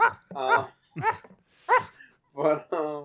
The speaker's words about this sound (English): but we were going to plan a shout-out to my dogs in the background.